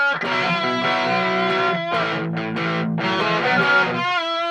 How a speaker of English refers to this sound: Now, I thought I knew what distortion was. It's that loud, rough noise guitars make in rock bands.